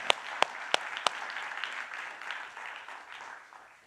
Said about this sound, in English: So let's give a round of applause to God and to his glory. Thank you, men. Thank you.